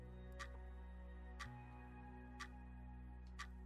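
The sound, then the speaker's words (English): A clock ticks steadily about once per second, four soft clicks over a low, continuous electronic hum that shifts pitch slightly partway through. No one speaks. “Don't mind the ticking. It'll stop. Eventually.”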